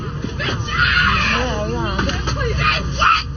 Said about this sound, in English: She's standing on seats screaming.